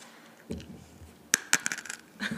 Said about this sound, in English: I'm going to bite this Starburst that's freeze-dried. Normally it's chewy.